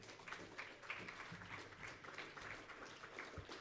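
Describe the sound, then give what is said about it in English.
An audience claps together for a few seconds to welcome a youth minister forward, a steady, dense patter of many hands, fairly soft overall. “Let's give Brad a little clap.”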